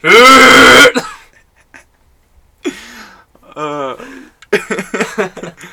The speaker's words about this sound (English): You gonna throw it up? You gonna hack it up like a furball? Start coughing.